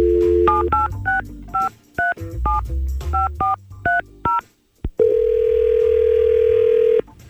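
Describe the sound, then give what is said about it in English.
A quick run of touch-tone telephone dialing beeps, a dozen or so short dual-pitched tones, followed by a steady two-second ringing tone on the line as radio hosts call a listener; clear, with no voices. “So let's see if we can get her on the phone.”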